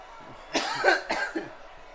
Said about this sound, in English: That cough was just weed